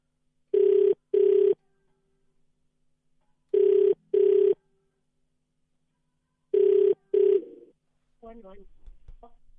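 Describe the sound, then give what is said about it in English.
A phone ringback tone repeats in three double-pulse bursts, the steady brr-brr pattern of an outgoing call, clear, before someone picks up and a voice begins speaking at the end. “All right, it's ringing.”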